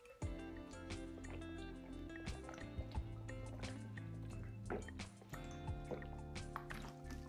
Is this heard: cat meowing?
no